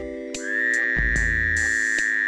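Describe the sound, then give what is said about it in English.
A male Fowler's toad gives a single loud, nasal, buzzing wail lasting about two seconds, steady and droning with a harsh, bleating edge, with no talking. “The following are various phrases scientists have used to describe the call of the male Fowler's toad.”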